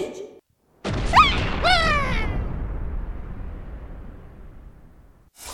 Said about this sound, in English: do you see what's happening in the sky? Yeah, there are sort of explosions.